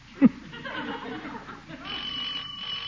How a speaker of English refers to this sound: Doorbell.